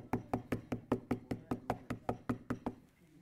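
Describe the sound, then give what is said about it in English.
Rapid, steady knocking on a door, about a dozen firm raps in quick succession, fairly loud, then it stops and fades to quiet. “At what point are you going to finally get up and answer the door?”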